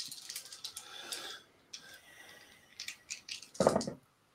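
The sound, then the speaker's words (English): Five dice, rolled for a technology test, rattle and clatter for several seconds in quick, uneven clicks, ending with a louder knock as they tumble to a stop. No one speaks. “Yeah, looking at it more, technology test again, please, but this time minus one. Okay, that gives me five dice.”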